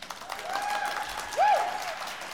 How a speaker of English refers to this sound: Can we do a round of applause? Can we, like, see what they think?